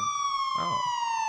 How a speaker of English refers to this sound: All right. It's a siren now.